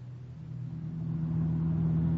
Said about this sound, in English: We pile into his car and head out for the Bergerot.